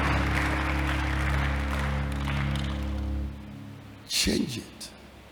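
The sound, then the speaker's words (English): An audience claps steadily for about three seconds, a dense, even wash of applause that fades out, followed by a brief burst of a voice. “You can clap to that.”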